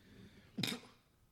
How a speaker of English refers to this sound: That's why I don't smoke. I always cough whenever I'm smoking anything, even if it's a cigar.